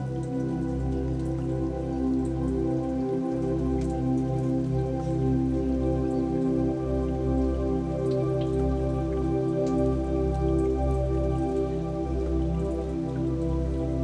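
Steady rain patters continuously, with scattered individual drops ticking over a low, sustained humming tone. No one speaks.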